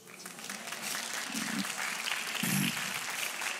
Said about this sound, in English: Yeah, if you could see the looks on some of your faces, some of you are clapping like, hi, you're crazy.